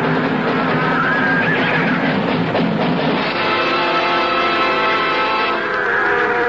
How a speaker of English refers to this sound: The cattle are all right, too. But they were stampeding. As soon as Big Red hit the ground, they started milling.